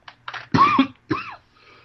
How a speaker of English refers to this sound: Excuse me, y'all, I got, like, a bad cough.